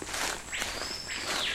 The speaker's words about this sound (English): What is that sound? It's a bird. A common name is Jungle Captain. Jungle Captain? Yeah. He's the captain. He's announced that we're here.